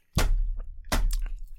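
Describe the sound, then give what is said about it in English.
Two loud, crisp crunches of toast being bitten and chewed, each followed by softer crackly chews, with a low rumble underneath and no talking. “What are you I'm sanding my tongue with the toast.”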